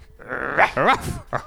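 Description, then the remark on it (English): A person's voice mimics a dog, letting out a few fairly loud yelping barks with wavering, sliding pitch, the last one short and clipped. “Not enough barking by female singers.”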